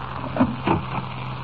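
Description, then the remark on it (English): A closet door is pulled open: two short wooden clunks about a third of a second apart, a faint rattle between them, and a steady low hum throughout. “Stand back. I'll open the door.”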